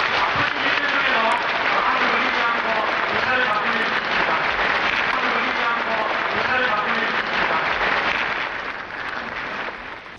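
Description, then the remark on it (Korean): A large audience claps in warm welcome for a teacher, a dense, steady roar of applause lasting about ten seconds with some voices mixed in, easing off slightly near the end. “네, 스승님을 환영하는 박수를 한 번 더 해주시기 바랍니다.”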